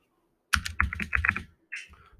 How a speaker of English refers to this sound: You can hear my keyboard, I'm sorry, but...